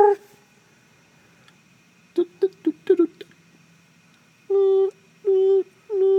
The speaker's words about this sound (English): Oh, woof! It's a dog, Ray Liotta.